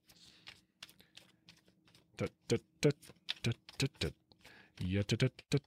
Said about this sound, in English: I've reshuffled and laid them out four times and I've got the same three cards.